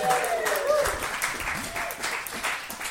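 An audience bursts into sustained applause, a dense wash of many hands clapping at steady volume for the full three seconds, with a brief whistle or cheer rising above it near the start.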